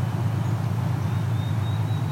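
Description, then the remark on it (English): Steady low rumble of urban traffic in Dundas, in the Dundas Valley along the Niagara Escarpment, a continuous wash of cars with a faint high whine drifting through, no voices and no distinct individual passes. “And we've got cars all over.”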